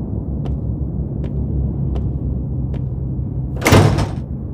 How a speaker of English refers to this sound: What's in there? Finally, the doors open for me. I enter alone.